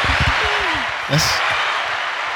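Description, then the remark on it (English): A canned burst of applause from a clap machine, dense and steady, plays loudly for a couple of seconds, with a brief tonal blip partway through. “We got a clap machine, so we were clapping.”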